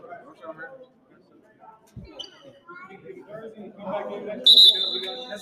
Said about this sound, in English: PBA referees are so nice. Even though they've been blowing their whistles a lot.